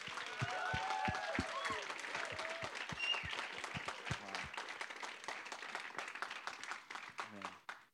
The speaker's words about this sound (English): Can we give one more big round of applause for our seniors?